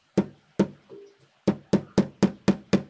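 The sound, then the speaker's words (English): Hammering, done to start woodwork: two separate sharp blows, a brief pause, then a steady run of six quicker, evenly spaced strikes, each a loud, crisp knock with a short ring. No one speaks. “How many tools do I need to start woodwork? A hammer.”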